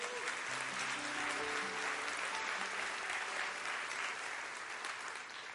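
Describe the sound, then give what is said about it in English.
An audience claps steadily for several seconds as a hand clap of praise for Jesus Christ, a dense, sustained wash of hand clapping with faint murmuring voices underneath and no single claps standing out. “If you're excited about the coming again of Jesus Christ, can we one more time give him a hand clap of praise?”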